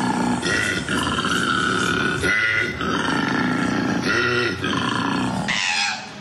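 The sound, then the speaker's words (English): A koala bellows in a long run of deep, rasping grunts and snoring pulls, broken by brief pauses, loud and continuous for several seconds with no talking over it. “Koalas will generally do what we call a bellow.”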